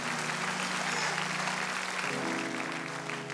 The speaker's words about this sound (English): Yeah, we're going to clap our hands for that.